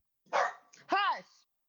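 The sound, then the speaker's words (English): A dog barks twice in quick succession, fairly loud, the second bark fuller and more tonal than the first, with nothing else sounding around them. “The dog be barking.”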